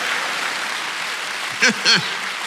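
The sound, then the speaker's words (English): An audience claps in a steady, dense wash of applause throughout, with two short rising-and-falling vocal whoops standing out near the end. “So, all right, give a round of applause while she got a job, everybody.”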